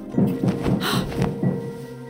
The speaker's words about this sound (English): A loud knocking at the door made me almost jump out of my skin.